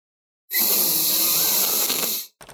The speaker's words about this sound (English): And you hear the plates being set in front of you. It's like, all right, in 3, 2, 1, sniff.